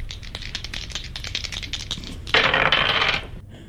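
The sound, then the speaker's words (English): A digital dice-roll effect from a dice app, rolling a seven: a quick run of light, rattling clicks like dice tumbling, then a louder, brief clattering burst before it stops. Fairly clear, with no talking. “That dice app hates you.”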